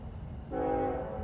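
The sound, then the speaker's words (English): A train horn blares as a train passes through a campus, a steady, sustained tone that starts abruptly, layered over the low rumble of rolling railcars, fairly loud. “Oh no, the stupid train. Not the train.”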